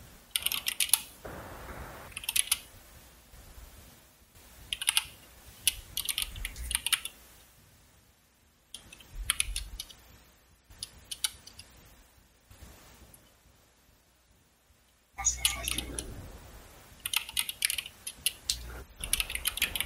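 Rapid typing on a computer keyboard, a steady clatter of keystrokes in bursts with short pauses, at moderate loudness with no talking.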